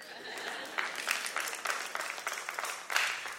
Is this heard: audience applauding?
yes